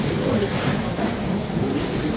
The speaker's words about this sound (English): Those aren't particularly noisy bags, listening to this on the headphones. They're cheap bags, cheap plastic. Crunchy ones.